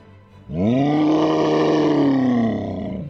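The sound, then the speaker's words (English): A big cat's deep, sustained roar bursts in after a brief quiet and holds loud for about two and a half seconds before easing off slightly, with no talking. “A proud roar suddenly rang out.”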